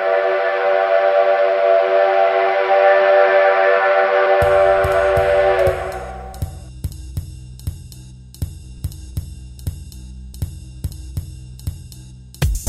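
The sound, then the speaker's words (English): A loud, steady whistle blows for about six seconds, a rich sustained tone, then fades out as a rhythmic drum-driven beat takes over. “It's not the 5 o'clock whistle. It's not time to go to work or get off work.”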